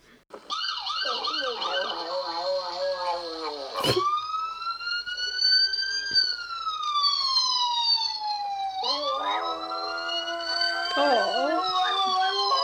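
A dog in a cage, wearing a cone on its head, howls loudly in long, wavering wails that rise and fall like a siren, with a few short breaks, sustained for over ten seconds.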